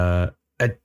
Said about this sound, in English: I'm going to sneeze. Okay.